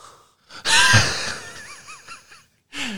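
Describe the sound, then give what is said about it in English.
A person imitates heavy, open-mouthed breathing: a loud, raspy gasp drawn out for a couple of seconds with faint wheezy squeaks, a brief pause, then another breath begins. “If we were going to make a Napoleon-esque podcast episode, it'd just be...”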